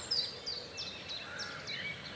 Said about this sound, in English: And the sound of the song, bird song down here in the village, and I say village, it's barely a hamlet, it's half a dozen houses. It got louder and louder, and it's such a tight pocket of sound, and so different to the sound that I'd been hearing